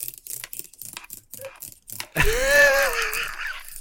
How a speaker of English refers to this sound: I was told just moments before recording that this cannot be the ASMR video, but to give you a little taste, here is my pen on a keyboard.